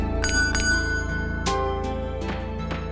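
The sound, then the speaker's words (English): A small bell on the counter of a hotel with no one at the desk is struck several times in quick succession, each ring bright and metallic with a short, shimmering decay, over a low steady background hum. “There's a bell. Guess I better ring it.”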